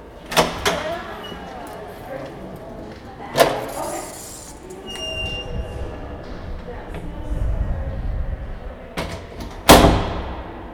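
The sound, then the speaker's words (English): A heavy basement door is unlatched and swings open with a drawn-out creak, punctuated by several loud knocks and thuds, then a final heavy clunk against a low, rumbling background. “Downwards, past flights of stone stairs that have literally been worn down by generations of feet, there lies an unassuming door in the basement.”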